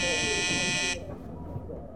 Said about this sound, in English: There's that communication bell, isn't there?